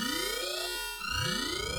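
A loud elevator alarm, set off by hitting the alarm, blares continuously, its electronic tone sweeping upward in repeated wails with steady high harmonics, unbroken, with no voices.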